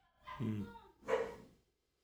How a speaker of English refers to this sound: Don't bark.